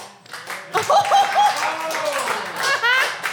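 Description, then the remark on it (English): An audience claps in a steady, dense patter for a few seconds as a vote for the pun "Fast and Furious George", with scattered cheers and voices mixed in before the applause trails off. “I love these claps.”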